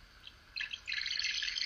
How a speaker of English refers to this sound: The bird has come to... Yeah. To sing the little song. And he's looking at me saying, I think you're done.